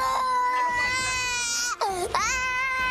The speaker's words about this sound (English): When the boy doesn't stop crying, one officer screams just inches from his face.